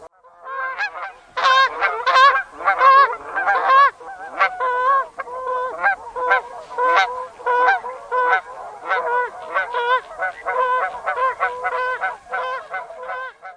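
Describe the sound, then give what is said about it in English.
A huge flock of Canada geese flying south in a V formation honk continuously, many overlapping calls in a steady, clamorous chorus, fairly loud, with no one speaking. “And sometimes it's impossible to miss, as a huge flock of Canada geese wing their V-shaped way south, honking loudly.”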